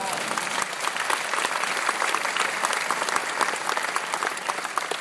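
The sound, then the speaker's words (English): Steady applause from a group of people, dense overlapping claps at an even, fairly loud level that holds without a break for several seconds. “I'll clap for that even now.”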